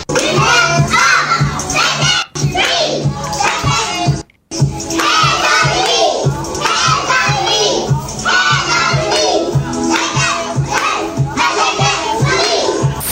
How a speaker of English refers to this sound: We're talking about toddlers doing karaoke to a … verse.